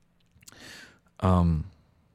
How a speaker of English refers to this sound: Sorry for yawning, guys.